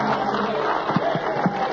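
A church audience gives the Lord a hand clap together in a steady, dense wash of hand claps, with the murmur of a crowd mixed in and a couple of louder beats standing out.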